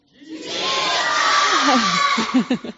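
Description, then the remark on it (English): A crowd of many voices shouts together in one sustained, loud collective yell lasting a couple of seconds, trailing off into a few scattered individual cries at the end. “Okay, one more time, guys. Can you yell it for me?”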